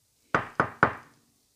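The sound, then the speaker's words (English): Three firm, evenly spaced knocks on a wooden door, clear, each with a short resonant decay, followed by silence. “three knocks, and the door opens.”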